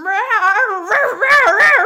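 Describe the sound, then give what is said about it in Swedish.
A person imitates a cat in heat, producing a loud, continuous wavering yowl that rises and falls in pitch, with a rougher, strained section near the end. “Har du varit med om en katt som löper någon gång?”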